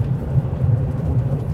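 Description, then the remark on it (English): A steady, low engine and road rumble from inside a truck driving on a mountain road toward Stewart, droning evenly throughout with no voices or distinct events. “All right, looks like I got about another 45 minutes to Stewart, so I'm gonna pay attention to what I'm doing and try and not drive off the road while I'm staring at these fucked up mountains.”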